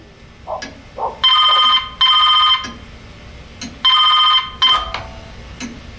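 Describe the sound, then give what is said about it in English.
A telephone rings loudly in two double-ring bursts, a brief pause separating each pair, with a few faint clicks and soft knocks around the rings and no talking, before an answering machine picks up. “left a very abrupt telephone message on our answering machine.”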